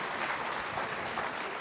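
Steady applause from an audience for a speaker after a presentation, a dense wash of many hands clapping at an even volume throughout, with no voices standing out.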